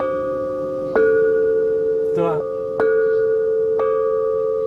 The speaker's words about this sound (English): each bell can produce two different tones depending on where you land your hammer. You see these protruding buttons on the bells?